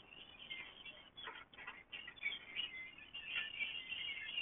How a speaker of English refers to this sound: I'm in a store parking lot, and there's a flock of red-winged blackbirds here, my little favorite. They're so beautiful sounding. Listen to them forever.